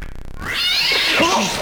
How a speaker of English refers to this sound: Oh, holy crap! What is up with that cat? Is someone throwing it?